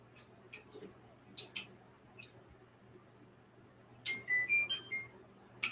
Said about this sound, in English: I was like, what the fuck is that timer for? It's for my egg.